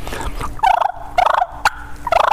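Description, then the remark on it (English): Turkey fighting purrs imitated with a mouth call by rolling the tongue and blowing hard: three bursts of rapid, raspy rolling purrs, fairly loud and mid-pitched, with a sharp click between the second and third. No talking. “But that's what I'm going to do, the fighting purrs. And fighting purrs, you just roll your tongue and blow hard.”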